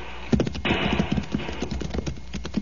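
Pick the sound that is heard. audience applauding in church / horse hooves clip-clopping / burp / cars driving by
horse hooves clip-clopping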